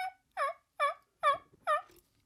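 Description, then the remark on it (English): A person's natural voice imitates a turkey hen's yelp: five evenly spaced, raspy, rising-falling notes, fairly loud, with no other talking. “But that give us a hen yelp to give listeners. That crap works. Natural voice.”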